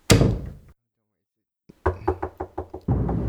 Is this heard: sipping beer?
no